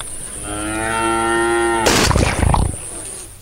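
A cow lets out one long, drawn-out moo, lasting nearly two seconds, followed by a short burst of rough, noisy sound before things quiet down. No one speaks.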